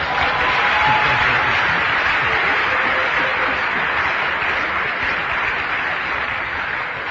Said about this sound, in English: Could you show us how you'd welcome Carl Miller, the announcer of Grace to You? Stay tuned for today's edition of Grace to You. Should be some applause there somewhere.